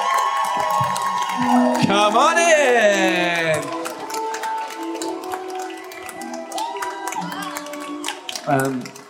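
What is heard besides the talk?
audience cheering and applauding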